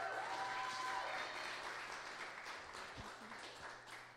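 A crowd breaks into steady applause, many hands clapping in a dense, continuous patter that holds fairly level for a few seconds before easing slightly toward the end.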